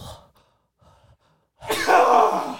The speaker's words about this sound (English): Oh, I don't know why I sneezed.